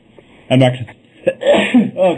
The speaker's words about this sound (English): I'm going to sneeze.